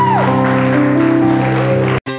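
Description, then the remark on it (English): The audience of Park Avenue Baptist Church in Southeast Atlanta gives God a hand clap of praise at a morning service, a dense wash of clapping layered over sustained organ chords, holding steady for about two seconds before cutting off abruptly. “Let's give God a hand clap of praise this morning.”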